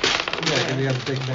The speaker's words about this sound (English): Yeah, but you'll get to toss them. Yeah, rolling the crap out of the dice is where it's at.